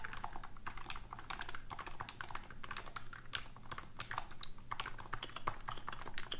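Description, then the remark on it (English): Rapid, steady typing on a mechanical keyboard with Dysub PBT keycaps fitted with rubber bands on lubricated Taupe Ray MX stems, a dense stream of soft, muted clacks, with no voices. “That's Dysub PBT keycaps with rubber bands on Taupe Ray lubricated MX stems using Krytox or Kirtox.”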